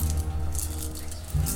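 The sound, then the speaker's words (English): Nine four-sided dice (D4s) rattle and clatter as they are rolled for damage in a tabletop game, in a quick, irregular series of bright clicks and taps over a steady low hum, with no one speaking. “Wow, my dice. 4. My dice performed terribly, I'm sorry.”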